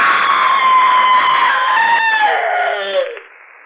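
A single long, piercing scream rings out loud, held steadily for about three seconds before its pitch sags downward and it breaks off abruptly.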